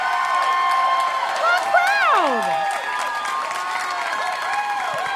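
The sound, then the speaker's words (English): A comedy show audience applauds and cheers steadily for about five seconds, with dense clapping under high, sweeping whoops and whistles that rise and fall throughout. “You guys are such a hot crowd.”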